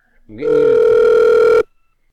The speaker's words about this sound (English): I'm gonna ring you through. I'm gonna put you on hold right now.